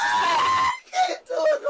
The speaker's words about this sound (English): After a bit more screaming, the wind seems to go out of … sails